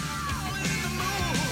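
A rock singer lets out a raw, sustained scream over loud, dense band music, the strained voice riding high above the thick guitars for the whole short stretch.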